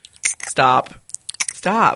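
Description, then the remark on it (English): Loud gum chewing with wet smacking and clicking mouth noises, broken up by short voiced hums or groans in between the chews. “And then you get mad because I chew gum.”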